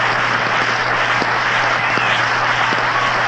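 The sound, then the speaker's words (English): A baseball stadium crowd roars in a steady, loud wash of cheering and applause over a double play on a DiMaggio line drive, holding constant throughout, with a low hum running underneath and no distinct voices standing out. “And the crowd is still in an uproar over that play.”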